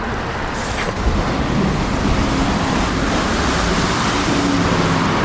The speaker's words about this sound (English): And, of course, the traffic noise is pretty profound. We'll be losing that in just a moment.